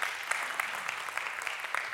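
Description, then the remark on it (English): A church audience applauds its AV technician, Matt, during a service, with steady, dense clapping that holds at an even level throughout, a bright crackle of many hands with a few sharper claps poking out. No one speaks. “Give Matt a big round of applause.”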